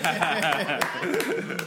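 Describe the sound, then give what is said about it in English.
A handful of sharp, irregular hand claps ring out, mixed in with chuckling and talking voices throughout. “Wow, I got to applaud you.”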